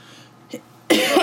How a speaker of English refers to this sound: Oh, my God. Why am I coughing?